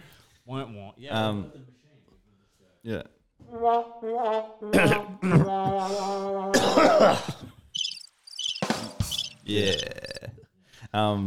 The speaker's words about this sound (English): Got a cold and a throat thing, and there's going to be so much of me coughing and like